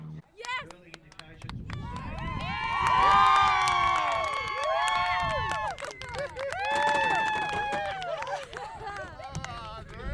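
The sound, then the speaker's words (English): A large outdoor beach crowd at a surf contest at Margaret River reacts to a surfer's score with cheers, whoops and shouts, many voices overlapping, swelling loudly twice, dipping briefly between bursts, with scattered claps and calls throughout. “You can tell from the crowd that Caroline Marks did not get the score.”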